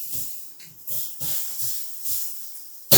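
Water splashed onto hot sauna stones in a sauna already at 70 degrees sizzles in a steady, bright hiss, with soft low thuds pulsing underneath about twice a second, then a sudden loud burst at the very end.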